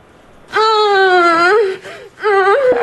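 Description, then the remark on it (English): Muffled moaning from a gagged woman in the 2008 horror film Bikini Bloodbaths Car Wash: two loud, drawn-out whimpering moans with a wavering, slightly falling pitch, the second shorter after a brief pause, with no words spoken. “I think she had like, I picture her, she had like a gag in her mouth.”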